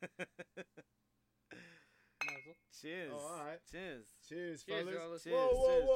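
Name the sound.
glass bottles clinking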